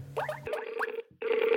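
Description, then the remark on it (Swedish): A phone line rings out with a steady electronic tone that breaks off briefly and then resumes, with some faint warbling sounds over it and no one speaking. “Så vi tar och ringer honom då, så får han utveckla det.”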